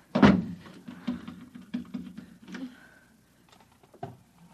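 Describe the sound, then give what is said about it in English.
A chair is shoved under a doorknob: a sharp bang followed by a run of wooden clunks and scraping knocks, then a brief hush and a final thud. “Shoving a chair under the doorknob.”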